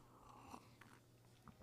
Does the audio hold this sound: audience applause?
no